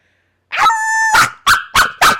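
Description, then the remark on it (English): A person loudly imitates a dog barking: a sharp yap drawn out into a short whining howl, then four quick, evenly spaced barks, with no other talking. “This is the bark of this week.”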